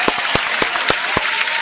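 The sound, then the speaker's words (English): An applause sound effect on the Ham Radio Show: a burst of applause from a small crowd, dense clapping with a few sharp, louder claps standing out, steady throughout with no talking. “Round of applause. Tony Viagra's on the phone.”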